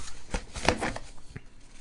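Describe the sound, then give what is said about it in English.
A brief riffle of a stack of cards being shuffled again, a quick burst of crisp papery flutters, followed by a few softer taps as the stack settles. “I'm going to shuffle these again and find our last one that we're gonna go out on.”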